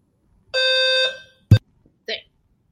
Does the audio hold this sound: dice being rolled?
no